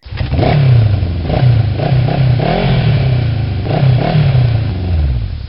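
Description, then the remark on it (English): Two large silver motorcycles roar loudly and continuously into a living room, engines revving up and down in repeated surges with a rough, throaty rumble, with no talking. “The doors slam open and two giant silver motorcycles roar right into the living room.”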